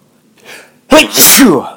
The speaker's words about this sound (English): Yeah, starting to sneeze, so I better get out of here